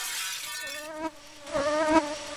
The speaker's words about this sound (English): Okay, well, the flies have gotten out, and they're circling around the room.